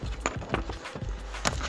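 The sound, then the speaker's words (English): A book page being turned: a few short, crisp papery rustles in quick succession over a low, steady rumble, with no voices. “Sorry, turning the page.”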